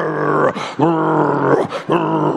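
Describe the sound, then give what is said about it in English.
A voice loudly imitates a man's snoring: three long, rasping, growly bursts separated by short breaths, forceful, with the pitch shifting from one snore to the next. “Hey, she said the snoring, he starts from treble. And then he goes to auto. And then he goes to tenor. And then bass.”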